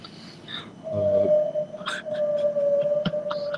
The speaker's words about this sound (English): The fuck is that in the sound in the back? What sounds that sound in the background? Sounds like a fucking ghost. It's a whale.